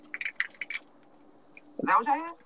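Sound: keys jingling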